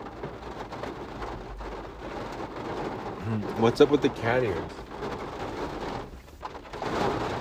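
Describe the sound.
Steady heavy rain hisses throughout with a low rumble of thunder swelling in the middle, while a person talks over the downpour.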